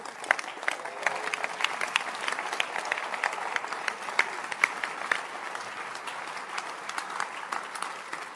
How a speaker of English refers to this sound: People are standing to clap. You, because of hunger, you are sitting down. You won't clap.